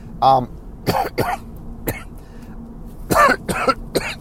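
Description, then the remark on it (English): A series of loud coughs in irregular bursts, with a throat-clearing sound mixed in, spread across a few seconds with brief pauses between them. “Sorry, coughing today.”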